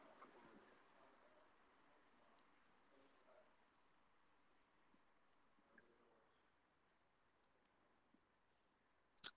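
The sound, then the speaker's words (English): A quiet phone line with low hiss and faint muffled background, then a single sharp, loud click right at the end as someone joins the call. “Somebody's clicking in.”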